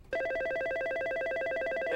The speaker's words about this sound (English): The phone, ….